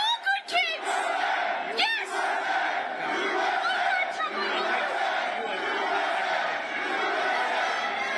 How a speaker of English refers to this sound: Just a complete bedlam. The crowd is all booing.